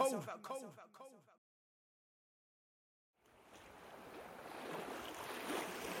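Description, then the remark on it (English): A man speaks briefly, then after a silent pause a loud, continuous roar of churning water and crashing waves builds and swells as a boat veers backwards and circles a giant whirlpool funnel, bumping up and down as it is pulled down the funnel wall. “My boat veers backwards and starts to circle the giant funnel.”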